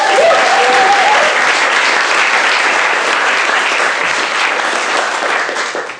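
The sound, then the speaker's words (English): Loud, sustained applause from an audience, a dense wash of clapping that holds steady for several seconds before tapering slightly at the end. “Round of applause.”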